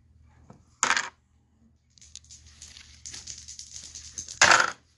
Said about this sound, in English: And I get a 2. My might was 3, so I got 3 dice to roll.